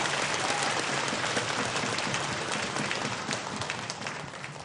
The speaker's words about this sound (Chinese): 我们现在就请杜医师， 掌声欢迎杜医师。